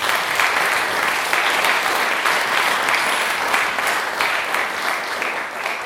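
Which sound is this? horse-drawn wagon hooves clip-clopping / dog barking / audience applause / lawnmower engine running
audience applause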